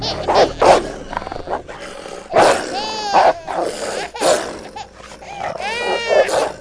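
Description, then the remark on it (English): Hungry dogs snarl and growl in harsh, loud bursts as they attack a baby, whose high, wavering cries break through between them, chaotic throughout. “Baby being attacked by hungry dogs.”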